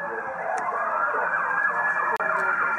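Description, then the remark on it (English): Police car sirens wail loudly and continuously as the police cars go past a house during a slow car chase in L.A., their pitch sweeping up and down in overlapping tones, with faint road traffic underneath and no one speaking. “He sees the cars go past his house.”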